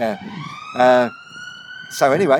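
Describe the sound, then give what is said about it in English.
An ambulance siren passes on a nearby main road by an airport. Its steady wailing tone rises slowly and holds throughout, moderately loud beneath short bursts of a person talking. “We're right near the main road here, so that's an ambulance going past.”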